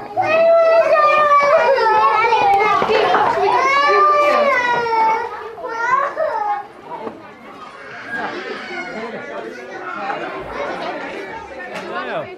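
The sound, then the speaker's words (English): A classroom full of young children, picked up through a microphone on a pupil's jumper, chattering and shouting over one another, high excited voices overlapping loudly for the first several seconds before settling into a lower, steady babble. “But then you hear in the background that some of his classmates aren't so chilled.”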